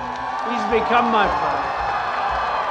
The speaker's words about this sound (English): The crowd cheered and Graham beamed.